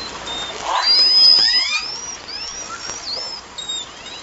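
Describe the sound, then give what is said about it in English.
Orca calls: high, gliding whistles and squeals rise and fall over a steady hiss, with a few brief chirping upsweeps and a long thin tone. The calls come one after another, with no talking. “Is that it? Orca sounds?”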